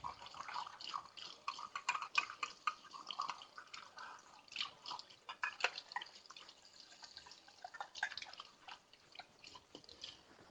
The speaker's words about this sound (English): Let me rinse this measuring cup out real fast.